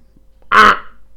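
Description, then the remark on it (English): A single loud, nasal honk made by a human voice imitating a goose, lasting under half a second and standing alone in an otherwise quiet moment. “That's my impression of a goose.”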